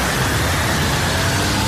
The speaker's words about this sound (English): Okay, so, right, this is me leaving the theater in Galway, okay? The rain, I can hear the rain, the thunder, yeah.